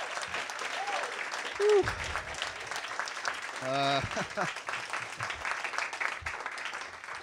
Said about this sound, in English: What a great open mic. Give a round of applause for all of our readers. Really amazing.